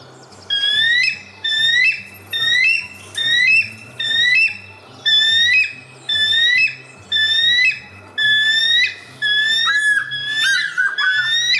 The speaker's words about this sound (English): This is how a bald eagle actually sounds.